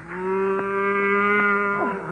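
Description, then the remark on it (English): A cow lets out one long, loud moo, a steady droning low call that bends downward and fades as it ends, with no other sounds around it. “what are you doing with that cow?”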